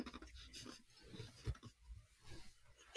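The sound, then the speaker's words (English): Someone crunches ice, giving a few faint, irregular crackling bites with brittle, scratchy texture, one slightly louder crunch midway, and no talking. “Girl, we can hear you crunching ice.”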